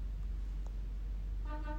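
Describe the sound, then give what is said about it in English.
A short truck horn honk sounds near the end, a single brassy blast rising over a steady low rumble of traffic, moderately loud. “Oh, someone answered. Thank you, Mr. Truck.”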